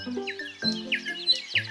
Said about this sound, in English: All these birds are singing louder and louder. Do you know why?